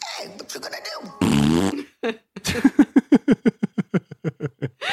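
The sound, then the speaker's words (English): A short, loud, buzzy fart sound, apparently blown with the mouth, cuts in after some murmuring, followed by a long run of rapid, rhythmic laughter. “And, but you know, you gotta fart.”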